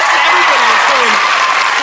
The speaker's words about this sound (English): The crowd is extra loud tonight. Absolutely crazy.